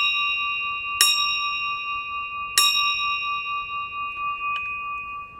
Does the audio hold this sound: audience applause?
no